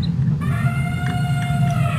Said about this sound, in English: Thank goodness for the elephant sound just then. That was perfect. The elephant, I know.